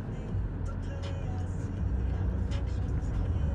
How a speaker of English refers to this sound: I'm finally recording audio of you and me in the car.